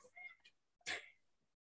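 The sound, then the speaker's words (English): A cat named Ambrose lets out a short meow, followed moments later by a brief, sharper burst of a second cry; no talking. “Even Ambrose is saying please. See?”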